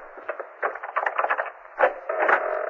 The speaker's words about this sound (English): thank you for opening the door.